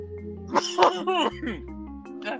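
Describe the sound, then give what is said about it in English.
A short coughing fit, several harsh throat-clearing coughs in quick, uneven succession with strained vocal sounds mixed in. “Hit your chest and cough.”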